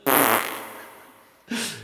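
A loud, sputtering wet fart bursts out up close and trails off slowly, followed by a second short, rasping blast. No voices are heard.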